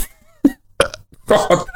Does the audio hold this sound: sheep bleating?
no